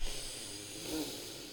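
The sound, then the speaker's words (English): A single deep, drawn-out inhale during a breathing exercise, airy, with a soft hissing rush of breath that swells briefly in the middle. No one speaks. “Let's do some breathing exercises real quick.”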